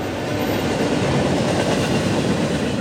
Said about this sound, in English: Until then, the most frequently heard locomotive sights and sounds in this part of California will be from the many slow-moving freight trains traveling through the valley.